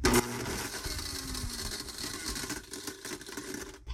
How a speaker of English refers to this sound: Also, never stick your fingers in the blender. Right. Right. Safety first, kids. Viewer, it's probably going to be loud. Never stick your finger in a blender.